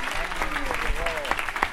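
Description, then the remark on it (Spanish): An audience applauds for Telemundo with a steady, dense patter of clapping, moderately loud, while a voice rises briefly over the noise. “Telemundo, den un aplauso a Telemundo.”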